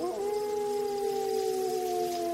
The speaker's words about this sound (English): Inside it, I could just make out the black shape of the patrolling Rottweiler. What if he gets out? It was as if the dog's ears pricked at being discussed, because he let out another low howl.